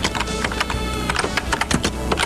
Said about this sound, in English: This is it. It's mostly just typing sounds.